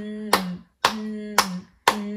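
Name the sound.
hands clapping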